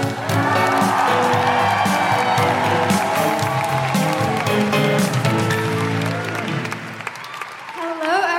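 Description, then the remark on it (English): A large theatre audience at a The Guilty Feminist show applauds loudly and cheers for Ankita Saxena, with whoops rising above steady clapping. The noise holds strong for about seven seconds, then thins as the crowd settles. “I will tell you no more about her except to applaud loudly, cheer loudly, make all of your patriarchy-smashing woohooing noises for the incredible Ankita Saxena.”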